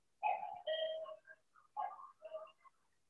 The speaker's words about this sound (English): Hold on, my alarm clock in the background.